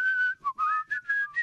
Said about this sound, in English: I'm talking about whistling in here. Can you whistle between your teeth? I don't need to, because I have a beautiful blow whistle.